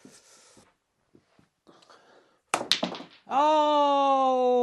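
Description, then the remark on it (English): Several sharp clacks of snooker balls colliding in quick succession as a cannon sends the black ball into a pocket, then a loud, drawn-out vocal exclamation rings out over the table. “And a cannon has sent the black in.”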